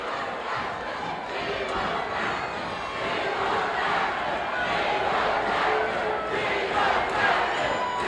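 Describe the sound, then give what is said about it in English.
A capacity arena crowd at a wrestling match chants "We want Backlund" loudly and steadily, many voices merging into a dense roar with rhythmic swells that repeat throughout, no single voice standing out. “The capacity crowd chanting, "We want Backlund."”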